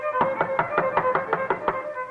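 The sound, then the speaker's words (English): A rapid, even run of about nine sharp knocks on a door, each a crisp thud, with a steady held musical tone sounding underneath throughout; the leader of a circus band knocks while young John Philip is practicing the violin. “John Philip himself played the violin, and one day as he is practicing, opportunity knocks at the door.”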